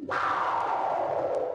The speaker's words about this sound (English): There it is. Transition. Got to get a better transition sound. That's the transition. It's a spaceship whoosh by.